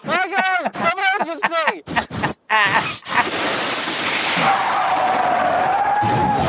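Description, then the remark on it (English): Excited vocal noises give way to a sustained, harsh roar with a thin rising screech, like a voice imitating tyres skidding into a pile-up. Loud, lasting several seconds. “you're like seven cars crashing together here.”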